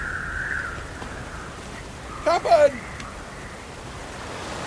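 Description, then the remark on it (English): A steady hiss of rain and rolling sea noise fills the background of a storm at sea, with waves tossing an old boat, and a single short shout from a voice breaking through partway. “I've never seen a storm like this”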